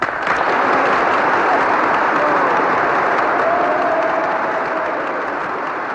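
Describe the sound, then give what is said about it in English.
Members of the US Congress applaud steadily after the final words of Churchill's address, dense clapping mixed with a roar of cheering voices, loud and sustained for over a minute without a break. “And with those final words, the members of Congress roared with approval, as you're hearing. It went on for over a minute.”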